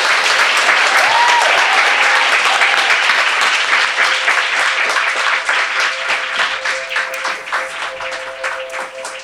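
A large audience applauds, a dense wash of many hands clapping at once, loud and sustained for the whole stretch and thinning slightly toward the end, with no talking.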